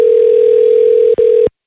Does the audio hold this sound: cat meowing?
no